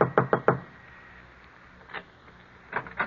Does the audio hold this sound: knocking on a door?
yes